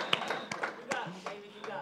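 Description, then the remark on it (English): An audience claps in a slow, steady rhythm, about five sharp claps spaced evenly, with a faint voice murmuring underneath. “And so, this clapping is happening. You guys are doing it.”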